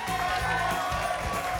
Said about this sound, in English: The crowd went wild.